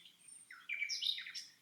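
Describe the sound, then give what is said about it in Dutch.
Soft birdsong with wind: a few quick, high chirps and warbling tweets tumble together over a faint, low background murmur, with no one speaking. “Op de achtergrond hoor ik kalmerende geluiden van de wind en van de vogels die zingen.”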